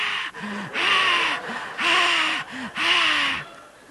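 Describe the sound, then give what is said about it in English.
A voice imitates the heavy, raspy breathing of children outside a bathroom door: three loud, drawn-out huffs in a steady rhythm about a second apart, with short voiced catches between them and no speech. “And I can hear them breathing.”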